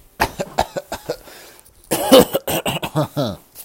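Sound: coughing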